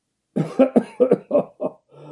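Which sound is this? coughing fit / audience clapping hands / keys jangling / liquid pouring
coughing fit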